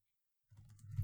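A short burst of quiet keyboard typing starts after a moment of silence, a few soft clicks over a low rumble, faint, with no voices.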